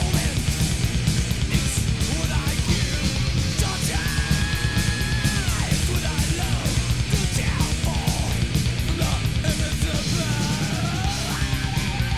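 A piercing, high-pitched scream held over a loud, dense heavy metal band, with pounding drums and distorted guitars driving steadily underneath in a raw live mix.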